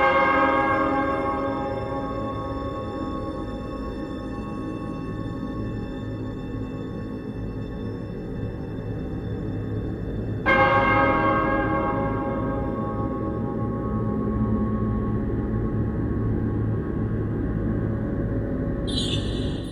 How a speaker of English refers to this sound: The Cenobites and that awesome bell noise that happens whenever they show up.